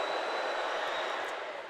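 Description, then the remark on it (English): An excited student crowd roars at a volleyball match as set three starts with the Tar Heels serving, a dense, steady wash of cheering and shouting that holds loud for the whole short moment, with a faint high whine above it. “You can hear the crowd, the students, getting very excited, hoping to see another Rams point and perhaps the Rams win a 3-0 sweep.”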